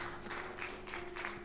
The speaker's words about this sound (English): Come on, you can give them a better hand clap than that.